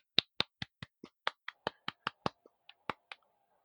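applause

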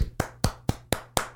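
hands clapping

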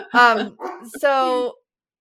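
dog barking

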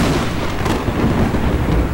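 thunder crash

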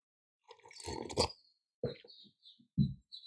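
sipping water

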